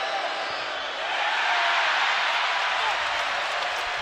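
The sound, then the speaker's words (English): A large arena crowd reacts as Randle of New York takes the first of two free throws and misses with 48.1 seconds left, a loud, continuous roar of mixed voices and scattered clapping, swelling after about a second and holding steady to the end. “The crowd will tell you what the result is.”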